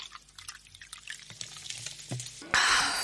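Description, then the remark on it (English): Liquid trickles and drips into a glass, a series of light splashes building into a fuller, steady pour near the end, clear with no voices; a drink is being poured into a couple of glasses for a toast. “All right, well, pour us a couple glasses so we can toast to another episode of this fine show.”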